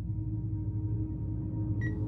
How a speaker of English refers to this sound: A beeping sound like an alarm clock woke me up as I tried to sit up and find the source to shut it off.